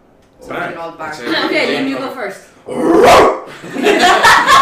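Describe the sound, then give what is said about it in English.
A person imitates a dog, producing a string of drawn-out, growly barking and yelping sounds, fairly loud, with a couple of harsher bursts near the end. “I was asked to ask who was the best bark.”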